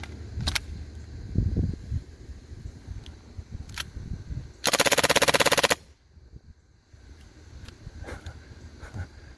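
A loud burst of rapid full-auto gunfire lasting about a second from a gun that runs away on full auto, with a few sharp isolated cracks before it and low rumbling noise throughout; the gun's hammer broke during these bursts.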